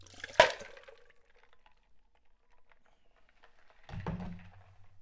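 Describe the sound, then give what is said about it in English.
A sharp clatter of ice and a quick splash as water and ice cubes are dumped from a chilled rocks glass while making a cocktail, followed by faint drips and a second rattling, sloshing pour a few seconds later. “I've been chilling my rocks glass here, so I'm going to dump out the water and the ice.”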